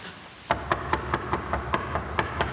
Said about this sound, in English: And she knocks, and she knocks, and she knocks, and she knocks day and night, day and night, day and night, day after day after day.